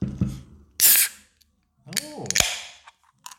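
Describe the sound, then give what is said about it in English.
A beer can pops open with a short sharp click and a loud hiss of escaping gas, then a voice answers briefly in the quiet afterward. “Yeah, so does anybody want to hear the pleasant noise of a can of beer opening?”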